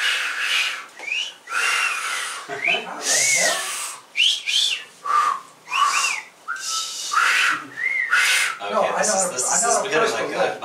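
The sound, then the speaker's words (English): A person makes a series of short, breathy rising-and-falling whistles, like an impressed wolf-whistle tried over and over, with voices and soft laughter mixed in toward the end. “Whistle sound. Yeah. An impressed whistle.”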